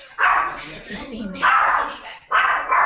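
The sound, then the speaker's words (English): A deaf female dog barks loudly, three sharp barks spaced about a second apart, with some rough, noisy sound lingering between them. “Why couldn't that dog go off on Ray Combs' commentary in the next match?”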